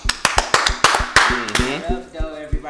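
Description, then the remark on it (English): A quick burst of loud, sharp hand claps from a few people welcoming a special guest, irregular and overlapping, tapering off after a couple of seconds as voices call out over the last claps. “Give it up. Clap it up.”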